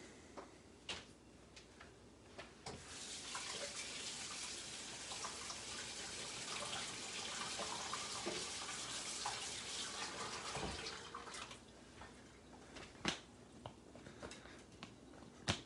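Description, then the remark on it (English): A faucet runs steadily for several seconds as a Sticky Buddy sticky roller is rinsed clean under the stream of plain water, with a few sharp knocks and handling clicks before and after the water flows. “And I've been using this again and again, just cleaning off with normal water, drying it off.”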